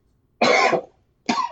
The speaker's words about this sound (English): Oh, son of a bitch, I'm coughing.